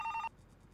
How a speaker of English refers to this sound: The sound of a phone ringing was pretty damn loud in the new quiet.